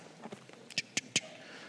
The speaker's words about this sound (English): I love the sound of flipping paper. So if you want to make my heart happy, you can do that.